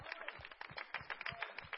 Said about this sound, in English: Let's clap our hands and welcome our visitors here today.